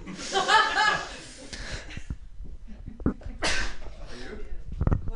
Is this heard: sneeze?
yes